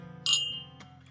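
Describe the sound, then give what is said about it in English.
A single bright clink of glasses in a toast at a tasting of a Western Oat white dog spirit, a sharp high ring that shimmers briefly and fades, followed by a faint knock against a low steady background hum. “So we can do the cheers.”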